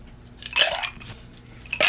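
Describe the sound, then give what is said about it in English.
Ice clinks and rattles in a glass as a Green Dragon cocktail, made of two liquors and no garnish, is stirred, with two louder bright jangling bursts amid softer scraping, no talking. “We're going to stir this because it's all liquor.”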